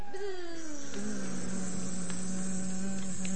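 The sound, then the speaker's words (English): Several voices hum a steady, droning buzz together, imitating a swarm of flies. The low, continuous buzz holds for the whole stretch, moderately loud, with a slight waver in pitch. “Buzz. Right. I want you to make that noise”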